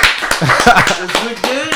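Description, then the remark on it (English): Scattered, uneven hand claps for a correct answer in a quiz game ring out sharply while several voices call and cheer over them, the clapping loose and irregular rather than a steady beat. “Clap it up. Clap it up.”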